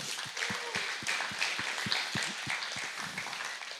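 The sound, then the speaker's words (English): A crowd applauds to honor the senior pastor, many hands clapping in a dense, continuous patter with individual sharp claps standing out, moderately loud and sustained throughout without any talking. “Shall we just give him a hand of honor?”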